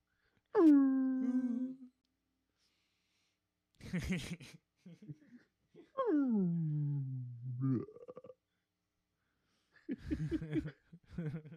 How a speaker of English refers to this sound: You see the little thing official Save Ty Young sound is of whales. You know.